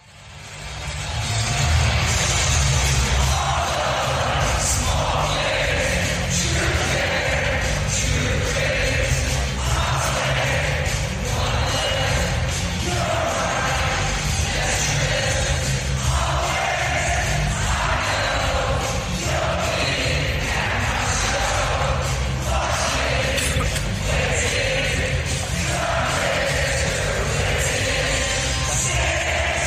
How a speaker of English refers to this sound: That is a loud crowd. I mean, they are having a good time, and why not? They're up 7-0 against the Tampa Bay Lightning. They're feeling pretty good right now.